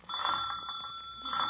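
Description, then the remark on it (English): A door bell rings in one steady, continuous peal lasting over a second, bright and metallic with a rapid rattling shimmer, alone with no voices. “Where's the bell?”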